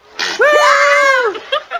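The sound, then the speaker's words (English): A short raspy blurt of a goat farting gives way to a child's shrill, sustained scream that trails off into a couple of brief yelps, loud, lasting under two seconds. “Yeah, so I decided that I'm going to play a goat farting and a child screaming.”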